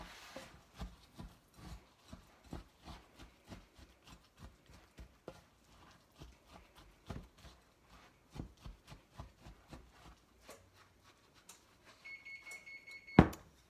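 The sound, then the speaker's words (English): Muffin batter being stirred in a bowl, a steady run of quick, hollow clacks and scrapes as the spoon knocks the sides, with no talking. A brief tone and a sharp click come at the end. “And then we're going to mix the rest of it all together.”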